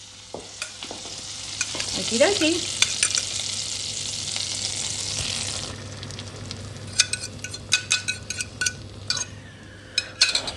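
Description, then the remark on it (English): Butter sizzles steadily in a frying pan with a bright hiss, then eases off as a utensil scrapes and clinks against the pan in short, uneven taps while an egg-soaked, eight-pointed star is put into the pan; a voice briefly speaks. “Oh, we can hear the butter sizzling.”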